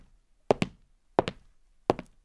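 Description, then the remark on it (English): Three slow, evenly spaced footsteps, each a quick double heel-and-toe knock on a hard floor, clear with quiet in between and no talking. “And footsteps.”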